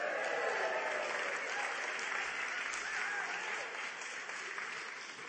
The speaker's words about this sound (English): I wasn't expecting such a brilliant rapturous applause, but I'll take everything.